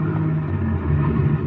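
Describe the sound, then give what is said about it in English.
A car engine rumbles steadily as the vehicle pulls away out in front, a low droning hum with a faint whine above it, constant in loudness, with no voices. “Car pulling away out in front.”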